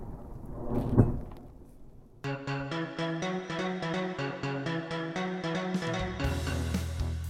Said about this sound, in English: The thunderstorm? Yes. The thunderstorm.